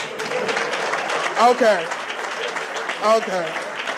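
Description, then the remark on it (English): A show audience claps steadily and densely for several seconds, answering a call for everyone who ever wanted to make a beat to clap, a bright crackling wash of many hands, with a couple of short voiced shouts or cheers rising above it. “Them claps was about the same.”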